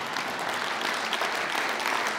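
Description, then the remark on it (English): An audience applauds steadily, a dense wash of many hands clapping at an even, moderately loud level throughout, with no voices. “Yeah, you can clap for that if you want.”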